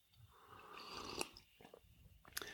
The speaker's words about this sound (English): Once you try this, you'll never go back. One more sip before we get into the movies.